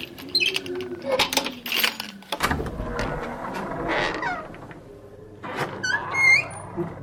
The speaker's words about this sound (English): I'd use a little oil on those door hinges there, …. Yeah, it's on my to-do list.